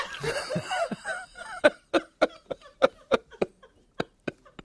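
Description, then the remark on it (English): A strained, croaky vocal sound gives way to a rapid run of about a dozen sharp, hacking coughs, fairly loud, quickening toward the end. “Just cough up that furball, girlfriend.”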